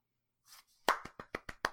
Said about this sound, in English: By applause. Thank you.